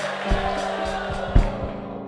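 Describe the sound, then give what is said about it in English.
A large crowd claps and cheers together, a dense, sustained wash of applause given as a clap offering to Jesus, with a few louder bursts and whoops rising out of the steady roar. “Give Jesus a mighty clap offering.”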